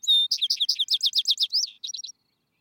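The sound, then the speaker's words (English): A vesper bird sings at twilight in broad, smooth pasture fields where cattle and sheep graze: a bright, high-pitched phrase with a clear opening whistle, then a quick run of about a dozen chirping notes, ending in a few softer trills. No voices, just the song. “Go to those broad, smooth, uplying fields where the cattle and sheep are grazing, and sit down in the twilight on one of these warm, clean stones, and listen to his song.”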